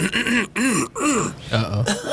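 throat clearing

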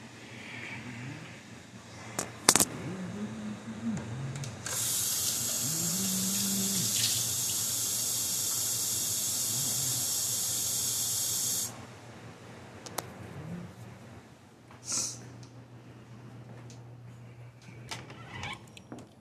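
water running

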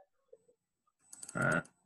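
computer mouse clicking

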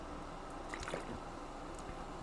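sipping sparkling water

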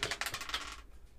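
dice being rolled

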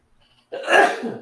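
sneeze

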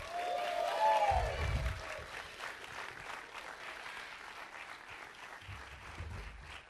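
audience applause

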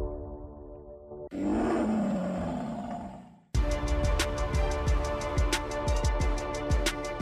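lion roar

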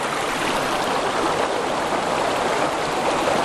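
flowing river water

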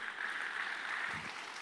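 audience clapping

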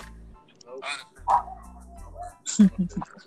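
dogs barking

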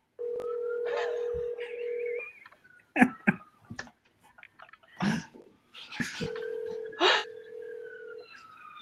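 outgoing phone call ringing

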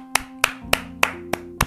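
round of applause

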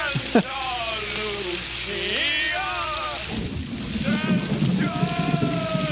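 rain falling

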